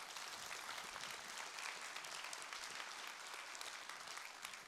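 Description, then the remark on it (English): An audience at Door Creek claps steadily during a sermon for several seconds, a dense, even patter of many hands at a fairly soft level, with no voices rising above it. “I was getting ready to get on you because last night they clapped right away when I said that.”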